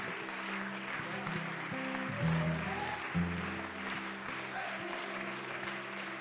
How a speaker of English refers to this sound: I wonder if we could clap our hands one more time unto the Lord.